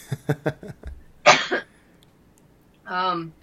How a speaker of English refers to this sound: Well, I'll answer and say I'm going to cough from this cold, I'm afraid.